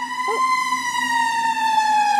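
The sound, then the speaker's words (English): A loud fire engine siren holds a steady, piercing tone throughout, its pitch sagging slightly near the end as it passes by. No one speaks. “So, as I was saying before the siren went by.”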